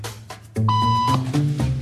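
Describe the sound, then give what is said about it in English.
A single steady electronic beep sounds for about half a second, clear and fairly loud, over a low droning background with no talking. “Beep means stand up.”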